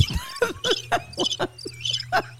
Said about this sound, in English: Birds chirping. Yeah, I think it's crickets.